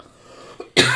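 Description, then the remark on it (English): After a near-silent stretch and a faint catch of breath, a single loud cough bursts out and runs to the end, with no talking. “cut the show before I start coughing.”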